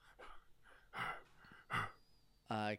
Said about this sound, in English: Blood is covering his muscles and is matting his chest hair. He looks wild and afraid, and he's breathing very heavily. He looks around and doesn't see anyone and just kind of leans against the wall, breathless.